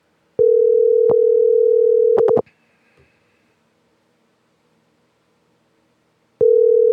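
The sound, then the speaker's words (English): A phone line ringing on the caller's end: a steady electronic ring tone lasts about two seconds, goes silent for several seconds, then starts again. A few faint clicks occur, and no one speaks. “We'll leave him a voicemail like we did with Chris”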